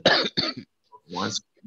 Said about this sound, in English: Hold on. Cough. It sound like Corona cough.